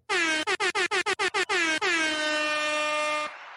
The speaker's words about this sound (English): We got a shout out and... the air horn. Can you guys hear the air horn?